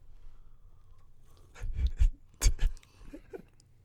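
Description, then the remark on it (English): Sipping a maple-flavored premium coffee, with a few short slurping bursts and soft handling noises in quick succession, fairly loud against a quiet background, with no talking. “So I'll take a sip here.”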